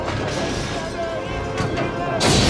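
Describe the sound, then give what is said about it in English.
Loud smashing and crashing as a group of vandals break objects in a museum, with a couple of sharp bangs and a harsh burst of shattering near the end over a busy background of voices. “So this group of, like, vandals are busted into the museum here and they're destroying things.”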